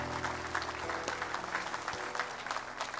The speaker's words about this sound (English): Somebody give the Lord a clap offering.